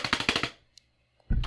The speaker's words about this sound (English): He's like this. That's it. That's it. He's got it. So he's very efficiently hunting and pecking at the keyboard.